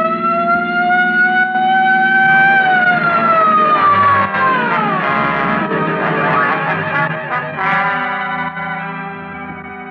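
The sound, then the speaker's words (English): A loud police patrol car siren wails steadily, its pitch rising and then sliding down, with engine rumble underneath and no voices, staying strong for the whole stretch. “Just as the not-so-sharp shooter made another try, I picked up just what I was looking for, a game of tag with a police patrol car.”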